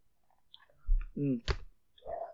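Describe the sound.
Someone chews a crunchy peanut butter sandwich, with soft mouth crunches, a sharp click of a bite, and a brief voiced hum in between, all fairly quiet.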